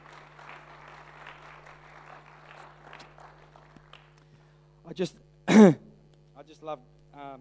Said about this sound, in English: Why don't we give the Lord a clap tonight?